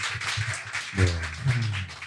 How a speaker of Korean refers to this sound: 네, 네, 박수 한번 부탁드립니다.